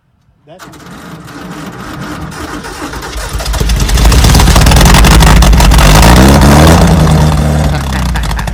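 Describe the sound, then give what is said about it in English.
The engine of the Elgato bus, fired up the same day the bus was brought home, cranks and catches after a brief silence, then rumbles steadily before revving louder and holding a heavy roar that eases slightly at the end. “Same day he got it home, he got it fired up, which makes me so stoked, man.”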